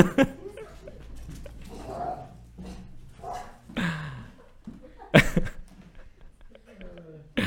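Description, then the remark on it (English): An excited dog barks and yelps in short, uneven bursts, running under a person's feet trying to get at the UPS delivery driver, with one sharp loud bark near the end, while a person talks over the commotion. “It's hard to keep a straight face in the midst of a dog running under your feet trying to get the UPS guy.”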